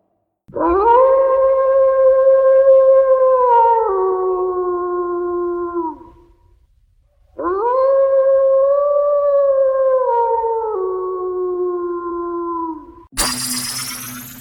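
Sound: wolf howling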